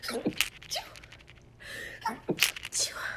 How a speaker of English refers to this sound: Oh my goodness, I hate sneezing because it always comes in like threes. But okay. So then, I'm so sorry I just sneezed on this podcast. That's so annoying. I hate when people sneeze.